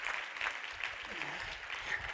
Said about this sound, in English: Would somebody clap your hands and give a little praise to God?